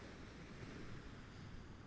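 A steady, broad rush of sea surf washing against the shore, with no distinct single crash, just a continuous roar and a bit of wind, with no voices.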